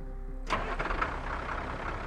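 After a moment of low hum, the engine of farmer Romaine Henry's pickup truck turns over and roars to life on his farm in Skidmore in 1976. It then settles into a steady rumbling idle. No voices.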